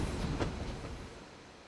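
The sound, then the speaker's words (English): A steam train rumbles along the tracks with a broad, steady roar and a few sharp metallic clacks, then gradually fades as it moves away. “They would then wait for the steam train to pass, hoping the train would flatten the stack of 3 coins into one lucky charm.”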